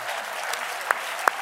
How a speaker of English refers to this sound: A little applause before they meet their end.